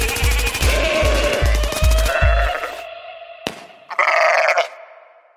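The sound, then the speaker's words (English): Goats bleat loudly, a long wavering cry over a rapid burst of thudding pulses, then silence before a short sharp crack and one more brief, nasal bleat, closing a segment called Rapid Fire Goats. “That has been the Rapid Fire Goats.”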